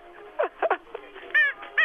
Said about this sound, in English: No, you have to squeak the toy back, not you talking.